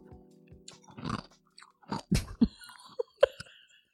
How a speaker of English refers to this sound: … makes crunching ice, as you can hear.